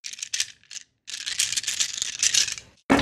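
Dice clatter and rattle as a player rolls a withering attack with two extra dice in a tabletop role-playing game, several bursts of rapid clicking tumbling together for a couple of seconds before a brief pause and a final clack.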